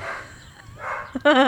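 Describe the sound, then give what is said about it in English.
A dog barks in a couple of sharp bursts, the last one loud and ringing, with a soft low rumble of background noise underneath. “How about gritting that dog fucking stopping barking?”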